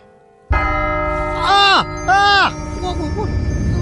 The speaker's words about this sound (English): Oh, the chimes. Did he say 1 o'clock?